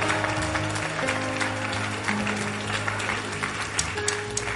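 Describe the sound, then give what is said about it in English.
A crowd claps steadily in dense, continuous applause welcoming a junior pastor's wife and her baby, holding for several seconds, while sustained low keyboard or organ tones hum underneath. “please welcome Rochelle with their baby, with their mighty clap offering”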